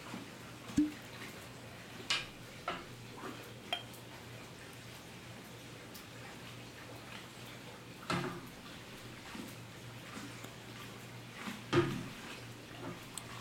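A 12-year-old Speyside scotch whisky, 40% alcohol and aged in ex-bourbon American oak and European oak casks, is poured into a glass. A few sharp glassy clinks and bottle-handling knocks are scattered over a quiet trickle. No one speaks.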